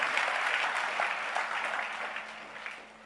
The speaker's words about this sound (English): Are you clapping your hands for the Lord Jesus?